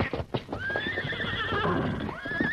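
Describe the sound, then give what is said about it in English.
Frightened horses, scared by an approaching fire they can smell, whinny in loud, shrill, agitated neighs, one long call rising and falling after another, while hooves clop rapidly underneath. “Horses are scared. They smell it, too.”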